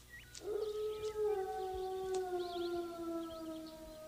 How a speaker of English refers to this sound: So Hobo runs into the forest. Yep. We get a random wolf howl.